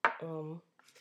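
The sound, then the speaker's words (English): A single sharp knock of a glass against a table, followed by a short sustained vocal tone and then faint breathy noise. “That's me tapping the table with the glass.”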